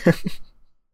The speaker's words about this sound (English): Like, bless cut it out of the podcast, the sneeze. Edit it out.